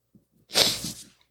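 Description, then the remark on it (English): A single sneeze bursts out sharp and hissy after a couple of faint, soft intakes of breath, then fades quickly. It stands alone without any talking. “Bless you, good sir.”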